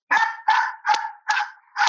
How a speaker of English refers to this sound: Cue the dogs. 1 second. I knew this was going to happen. Let me let the hounds out.